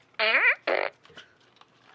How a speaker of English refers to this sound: This lights up when it farts.